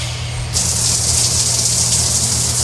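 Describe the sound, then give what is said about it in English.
A shower switches on after a brief pause and runs in a steady, loud hissing spray, with a low background hum underneath and no voices. “Shower first, I guess.”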